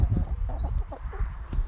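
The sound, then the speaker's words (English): Several hens surrounding a man sitting on the floor cluck softly and irregularly, low murmuring clucks overlapping with a faint high chirp or two above a steady background rumble. “you're a 30-year-old man sitting on the floor, surrounded by hens, talking to yourself, talking to the hens.”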